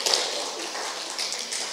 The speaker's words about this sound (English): Wonderful. Yeah, give her a clap. That's good. Well done.